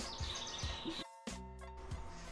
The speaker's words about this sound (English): So anyways, I'm going to stop talking now, and these birds behind me are probably going to keep talking,